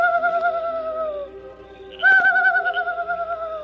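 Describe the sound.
A man imitates a night bird's call as a signal at night near a camp: two long, wavering, hooting notes, the second starting with a sharp breathy burst. Clear and fairly loud over a quiet background.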